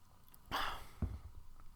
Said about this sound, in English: Let me take another sip.